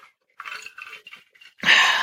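Someone drinks ice-cold water from a Hydro Flask in a series of short, irregular gulps and slurps, then lets out a loud, breathy exhale of relief.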